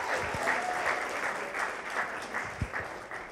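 An audience at Encounter church applauds steadily to welcome a speaker, a dense wash of clapping that holds at an even level for a few seconds, with a few sharper individual claps standing out.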